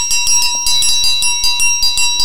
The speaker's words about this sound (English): We didn't forget the bell.